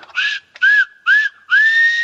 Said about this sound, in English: But in the 1950s, he was transferred to his own East Lancashire Railway. And when he took the engine down the line, he would go past his own garden and he'd pull the whistle.